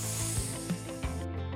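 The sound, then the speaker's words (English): A person makes a hissing sound with their voice: one steady, airy hiss lasting just over a second, fairly soft, with a faint low hum and a few light clicks beneath it. “But first, have you been practicing your hisses? Hiss.”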